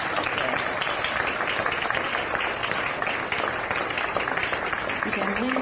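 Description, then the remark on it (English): Steady, sustained applause from a crowd at a gathering after a closing prayer, a dense crackle of many hands clapping at once that stays loud and even throughout, with a faint voice surfacing near the end. “And I'd say applause for everything that happened today.”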